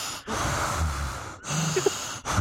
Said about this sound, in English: Very heavy breathing tonight,